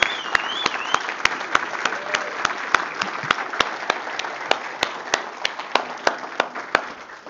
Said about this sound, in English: But would we recognize what God does in people this morning by honoring her and with her God with a praise offering and a round of applause for what God has accomplished?